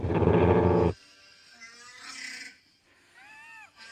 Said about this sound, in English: That's a drawer. That's people pushing like Coke cans and like sliding drawers. See, it's a guy pulling a drawer, and it sounds like Chewbacca.